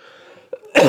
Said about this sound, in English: Did you hear that cough, man? It's bad.